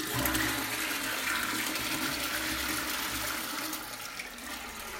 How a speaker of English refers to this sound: I gotta go. I'm gonna flush this toilet for.